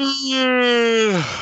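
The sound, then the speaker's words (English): A long, drawn-out yawn: a steady, voiced tone that holds for about a second, then slides down in pitch and trails off into a breathy exhale. No talking over it. “Oh, the official yawn.”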